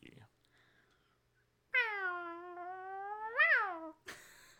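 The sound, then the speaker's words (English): A voice imitates a small whistling firework: one sustained, nasal whistle lasting about two seconds that swoops upward near the end, followed by a short noisy burst, loud. “No, I was trying to do like a little mini firework.”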